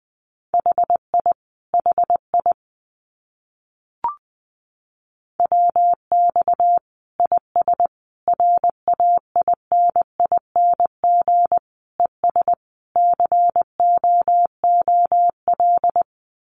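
Morse code practice tones at about 20 words per minute: a single steady mid-pitched beep keyed into quick dots and dashes, with one short pause and a faint click partway through.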